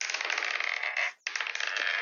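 Dice clatter across a hard surface in a dense, rattling roll, pause for a split second, then tumble again in a second roll, for two attack rolls in a tabletop role-playing game, showing a 15 and a 17. Fairly loud, with no talking.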